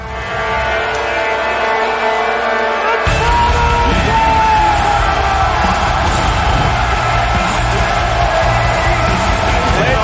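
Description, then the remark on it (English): A huge arena crowd at a wrestling show roars with cheers, yells and whoops in a dense, sustained wall of noise for a hometown wrestler's entrance, swelling even louder and fuller about three seconds in and staying at that peak. “And the crowd goes nuts.”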